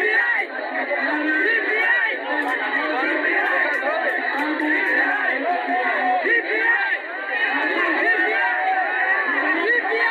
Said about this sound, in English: Now take a listen to the people heckling Ruto as he asked them to reject BBI, and the very same people shouting at the top of their voices that they will support the BBI.